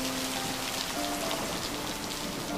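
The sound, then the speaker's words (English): Steady rain patters on a surface, a dense, even hiss of countless small drops with no voices, holding constant throughout at a moderate level. “The fairies flutter, swoop, and glide in the pattering rain.”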